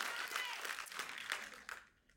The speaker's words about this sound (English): You're not clapping for me, you're clapping for the truth of what I said.